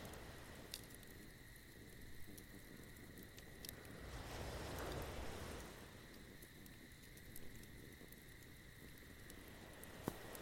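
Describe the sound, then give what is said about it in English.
A crackling fire with a few sharp pops scattered over a steady, dense hiss, swelling briefly midway like a soft wave, at a quiet, even level with no voices. “Listening to the sound of the crackling fire.”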